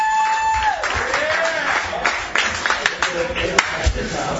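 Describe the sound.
A crowd at an open mic night at Bonkers in Altamont Springs applauds a comedian with dense, steady clapping lasting a few seconds, mixed with cheering voices and a brief whistle-like tone near the start.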